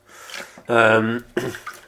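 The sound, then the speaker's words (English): Water patters and splashes steadily as someone washes up dishes, briefly interrupted by a short, loud voiced tone before the running water returns. “I'm just doing a little bit of the old washing up at the moment. If you can hear pitter patter of water, the cat will probably want feeding again soon.”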